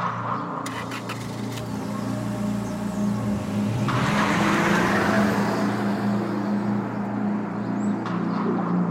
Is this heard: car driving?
yes